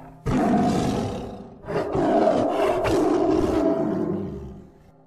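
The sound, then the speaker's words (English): A tiger roars twice, loud: a short opening roar, then a longer, rumbling one lasting several seconds before fading out. No voices, just the animal. “And yet, that awful tiger, those shrieks, that blood.”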